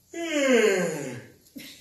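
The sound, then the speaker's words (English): A voiced yawn: one long, drawn-out moaning tone that starts fairly loud and slides gradually downward in pitch, fading out before a brief new voiced sound begins at the very end. “There's no reason to use vocal cords when you yawn.”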